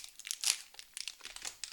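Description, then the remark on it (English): A food wrapper crinkles in a quick run of irregular, crackly bursts, hissy and bright, loudest near the start and then scattered more softly, with no voices. “You're not eating, it's your fucking wrapper.”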